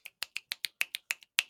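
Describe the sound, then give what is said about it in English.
Quiet finger snapping done as golf snaps in place of golf claps, about nine crisp snaps in a quick, slightly uneven rhythm with no talking over them, like a soft snapped round of applause. “I'd like to take this moment to do golf snaps.”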